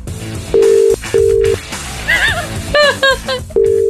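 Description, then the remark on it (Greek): A phone line rings with no answer: three steady, flat ringback tones about half a second each, separated by brief pauses filled with faint warbling, chirpy sounds in the background. “θέλαμε να πάρουμε τηλέφωνο, τον ευρούμε, αλλά δεν καταφέραμε να τον ευρούμε.”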